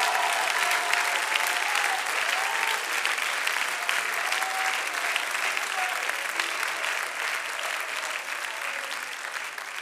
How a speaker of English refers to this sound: Clap your hands again and just shout the name of Jesus and worship.